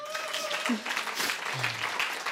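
An audience claps steadily, a dense wash of many hands, with a few faint whistles and voices mixed into the applause.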